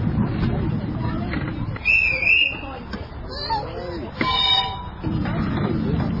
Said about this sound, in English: It's certainly a long trip around the football field, and there's a train coming in the opposite direction with an orange engine. And we're being pulled by a great engine called Vesuvius.